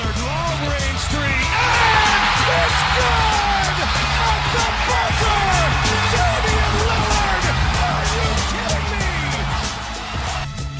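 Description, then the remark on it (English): A packed arena crowd roars and cheers Damian's buzzer beater that sends the Thunder (OKC) home, with overlapping yells and whoops rising above a dense, steady wall of noise that holds for about ten seconds before easing slightly at the end. “It was Damian making that buzzer beater send Thunder home.”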